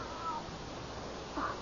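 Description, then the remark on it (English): Two short, faint cat meows, one early and one near the end, separated by a pause, heard over a steady low hiss with no talking. “the cat.”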